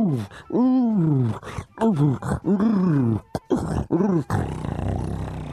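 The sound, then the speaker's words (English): A person playing the Lion from The Lion, the Witch, and the Wardrobe imitates a lion roar with a series of loud, drawn-out growling roars and groans, rising and falling in pitch, trailing off into a rough noisy rumble at the end. “Was it fun, Lion?”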